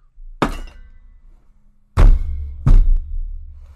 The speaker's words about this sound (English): I just slammed my head against my desk.